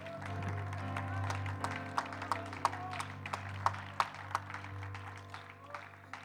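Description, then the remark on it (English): A church audience clapping their hands in praise to the Lord during a morning service, in scattered, overlapping applause, steady and moderately loud, over a low sustained hum. “Give your Lord a hand clap of praise this morning.”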